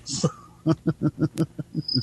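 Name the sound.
cricket chirping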